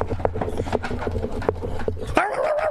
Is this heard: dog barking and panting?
yes